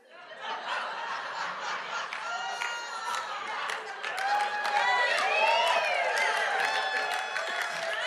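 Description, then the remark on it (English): A Pentecostal audience claps steadily for several seconds, the dense patter swelling louder about halfway through, mixed with scattered cheering, whoops and laughter from the crowd. “Some of you are not quite sure why everybody's clapping.”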